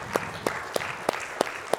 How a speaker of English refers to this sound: Can we please give the Lord another hand clap together tonight?